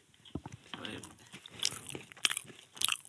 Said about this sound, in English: He's eating both at the same time, folks. He's slurping it up.